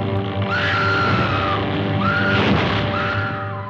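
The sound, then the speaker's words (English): A woman in a 1933 horror film lets out three long, shrill screams in quick succession, each rising and then trailing off, set against a loud, dense, hissy background like an old movie soundtrack. “the original Scream Queen, Faye Ray, from King Kong way back in 1933”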